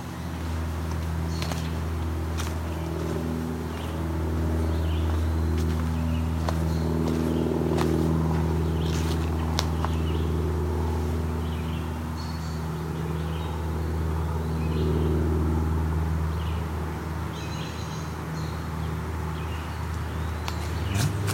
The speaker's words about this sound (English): Unfortunately, a lot of airplanes here, too.